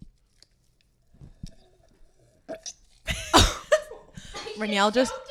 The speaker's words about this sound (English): … just choked. She's choking currently.